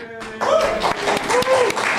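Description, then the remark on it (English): An audience bursts into steady, loud applause, a dense wash of many hands clapping, with a few cheering voices rising above it. “Definitely worthy of applause.”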